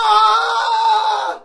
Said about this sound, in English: as soon as he was out the door, he screamed in abject terror.